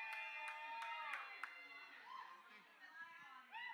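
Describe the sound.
A few sharp, scattered hand claps ring out during the first second and a half while voices cheer and chatter throughout, with a bright whoop rising near the end.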